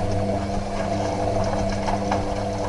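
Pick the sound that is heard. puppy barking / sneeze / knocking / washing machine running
washing machine running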